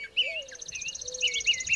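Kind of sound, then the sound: bird, songbirds chirping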